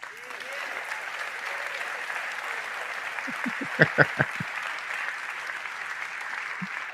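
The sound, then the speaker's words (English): A large audience applauds steadily for several seconds after a politician says she is ready to press the nuclear button, a dense wash of clapping with some cheering mixed in and a few sharper bursts near the middle. “Hurrah, hurrah. Let's all cheer for a nuclear holocaust.”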